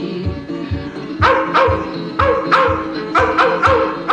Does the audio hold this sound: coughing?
no